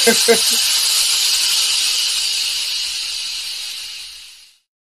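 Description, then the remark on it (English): A loud, steady hiss of steam being released runs for about four seconds, then tapers and cuts off. A brief low voice-like murmur sits at the very start. “We'll release our steam with an overdue Veer events”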